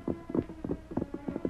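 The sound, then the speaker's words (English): Horse hooves clip-clop in a quick, even walking rhythm, roughly nine or ten hollow strikes at moderate volume, with no voices over them. “I'll lead the pack horse.”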